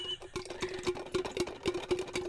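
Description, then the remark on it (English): A Stanley tumbler cup being handled, with a quick series of about eight crisp taps and clicks against it at a fairly steady pace over a faint constant hum. No one speaks. “As you can hear, that is it. Stanley Cup ASMR time.”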